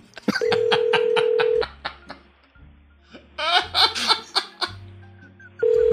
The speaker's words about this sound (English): So we're going to call it. All right. Let's see what's going on with this number. Hold on right here. We're going to dial it.